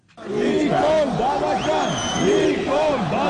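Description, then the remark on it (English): A large crowd of thousands of Armenian protesters in Yerevan, Armenia, shouts loudly, many overlapping voices rising and falling in pitch and blending into a continuous, surging roar that holds steady throughout. “Thousands of Armenians have protested in Yerevan, infuriated by the terms of the deal that brought an end to fighting with Azerbaijan over Nagorno-Karabakh.”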